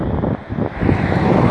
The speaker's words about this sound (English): It's fucking hot today. It's kind of windy. It's, what do they call them? The Santa Ana winds.